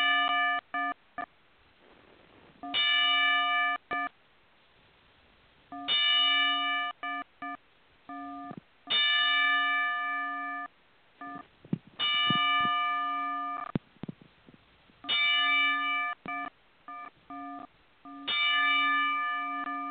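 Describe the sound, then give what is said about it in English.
A boxing ring bell clangs over and over at slow, steady intervals as a ten-bell salute, each loud metallic strike ringing out briefly before the next, with no voices in between. “We're going to give her a 10-bell salute.”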